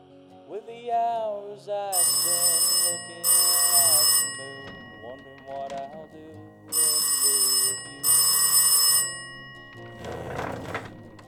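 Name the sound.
telephone bell ringing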